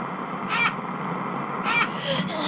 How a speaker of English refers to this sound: The vultures are back. They are pecking at my eyes.